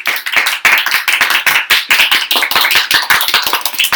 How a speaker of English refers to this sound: Thank you, live studio audience, give us a clap. Woo! There we go. Woo!